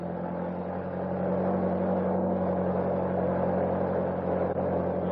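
A car engine is started and rumbles steadily, its tone swelling slightly as it revs and pulls away to follow another car, a continuous motor drone with no voices.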